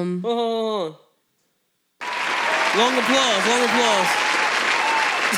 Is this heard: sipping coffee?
no